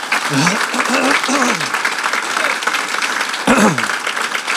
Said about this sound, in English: I think he deserves a big round of applause.